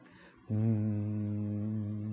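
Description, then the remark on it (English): A single low, steady hummed Om (Omkara) tone, the primordial sound of Vedic chant, from a human voice begins abruptly after a brief quiet moment and holds evenly at a constant pitch, rich in harmonics, with no words spoken. “Like that. It's a hum.”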